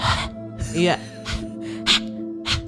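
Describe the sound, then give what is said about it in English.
A voice imitates heavy breathing heard when playing back their audio recording, about five ragged, gasping breaths in a steady rhythm, some with a raspy voiced edge, over a constant low hum in the background. “and not a happy breathing.”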